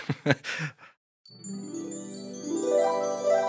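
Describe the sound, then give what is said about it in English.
A brief burst of voice, then a short silence, gives way to shimmering wind chimes blowing gently in the breeze: overlapping ringing tones that sustain and climb in pitch, swelling steadily louder for a couple of seconds. “Do you hear the wind chimes blowing gently in the breeze?”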